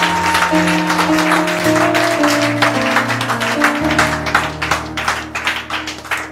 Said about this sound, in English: Somebody give the Lord a mighty clap offering.